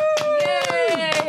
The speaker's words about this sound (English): let's give ourselves the crescendo we've been aching for this entire time and clap for ourselves, please.